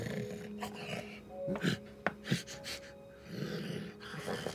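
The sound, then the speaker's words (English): A voice imitates a low, rumbling growl, rough and sustained, broken by a few breathy snorts and sharp clicks midway before the growling resumes, moderately loud. “Her shirt's growling.”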